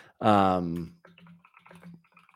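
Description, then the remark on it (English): A short voiced sound opens, then soft, rapid clicks of typing on a new custom computer keyboard follow, quiet, irregular taps continuing for a couple of seconds. “Can you hear me typing on my new keyboard? Custom keyboard.”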